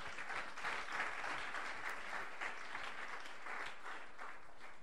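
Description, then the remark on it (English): A crowd breaks into sustained applause, many hands clapping at once in a dense, steady wash of sound for several seconds without pause or speech. “Oh, you are not clapping for that?”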